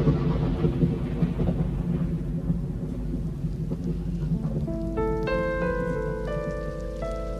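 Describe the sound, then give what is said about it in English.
Steady rain with a deep, continuous rumble of thunder, joined partway through by gentle, sustained chime-like musical notes playing over the storm; a 30-second clip played by pressing a button on a green sound box. No one speaks. “Like this one is called The Peace of Thunder.”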